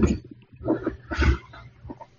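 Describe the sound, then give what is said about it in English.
A dog that wants to leave the room makes a few short, throaty grumbling and whining noises in uneven bursts, moderately loud, with brief pauses between them and no one talking. “No, it's my girlfriend's dog.”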